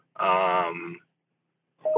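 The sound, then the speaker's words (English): A single loud electronic beep, a buzzy, harmonically rich tone lasting under a second, followed by silence before another short burst of sound begins at the very end. “Look, we've got another beep.”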